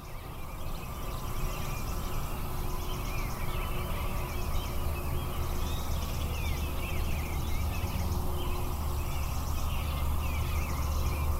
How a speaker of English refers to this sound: Well, there are a lot more birds there, but it's pretty hard for me to hear them. That's right. But what you do hear is the traffic from the interstate.